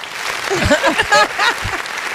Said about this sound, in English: That's great. Well, amazing. We need applause for that.